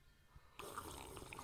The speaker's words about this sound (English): So I anyway, listeners, you may have already guessed, but it's bloody breakfast juice. I'm having a bit of a sippo on this breakfast juice, and I'm having a sip right now, and I can't distinguish.